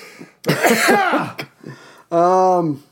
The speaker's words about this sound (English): I'm obviously doing better than you. I'm not coughing up a lung.